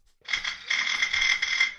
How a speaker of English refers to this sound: Who lives behind a bell like this?